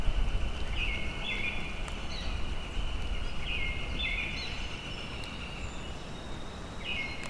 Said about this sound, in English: Song sparrow.